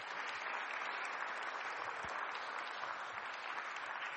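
An audience claps steadily and evenly for a speaker, a dense wash of many hands at a constant level for several seconds with no voices standing out.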